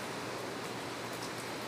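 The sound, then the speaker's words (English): Air conditioning units hum and whir in a steady, unbroken wash of noise with a faint low drone underneath, holding an even level throughout with no voices. “You can also hear air conditioning units.”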